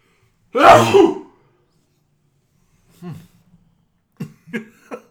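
A single loud sneeze bursts out near the start, followed after a pause by a few faint, short vocal murmurs.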